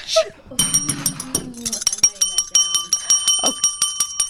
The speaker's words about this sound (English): I'm throwing this bell now at the wall. Did you hear what just came out now?